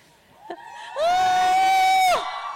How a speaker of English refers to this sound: When Durjoy is anywhere, I always see hordes of girls, women around screaming their love for him. Where's the screams, girls?